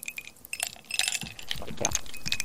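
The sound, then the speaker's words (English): A kitten's toy jingles and clinks in quick, irregular bursts, bright metallic rattling that grows busier and more continuous toward the end, with no one talking. “Just don't play with the kitten's toys!”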